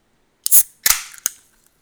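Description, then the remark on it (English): Seltzer cans being cracked open: three sharp, bright pops in quick succession, the first two trailing off into short fizzy hisses, with no talking. “They have been cracked.”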